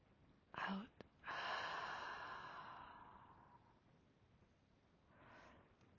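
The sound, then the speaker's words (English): During a guided breathing exercise, after breathing in through the nose and holding: a short catch of breath and a soft click, then a long, airy open-mouth exhale that gradually fades over a couple of seconds, with a faint breath at the end. “Hold your breath and release with your mouth open.”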